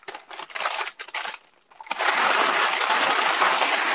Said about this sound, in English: Sorry, it just got really loud. I'm folding up my parchment paper from my kale chips.